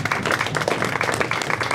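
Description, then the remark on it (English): A steady burst of applause for a guess in a movie-cast guessing game, many hands clapping together in a dense, crackling wash that holds at an even loudness for the whole short stretch, with no voices. “First of all, a round of applause for that guess.”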